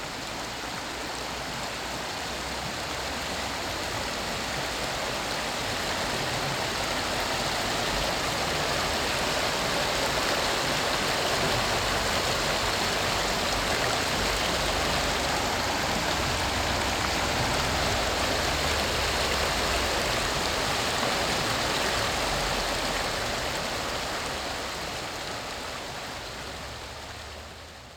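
A brook at the Living Waters Reflection Center in Maggie Valley, North Carolina, flows steadily at 7 o'clock in the morning on June 2nd, 2019, with a dense, even rush of water babbling over stones, continuous for the whole stretch, with no voices.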